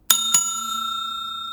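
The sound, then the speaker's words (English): A bright bell rings twice in quick succession, two sharp metallic strikes followed by a long sustained ringing tone that lingers clearly with no talking. The double bell signals the end of a shift and the locking of the front doors. “Well, that was the double bell.”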